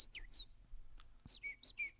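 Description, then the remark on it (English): A person whistles a convincing bird call, a series of bright chirps and descending tweets in two quick bursts, fairly loud with no talking. “That's one of the best impressions of an animal I've ever heard.”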